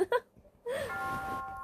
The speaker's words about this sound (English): Ding dong.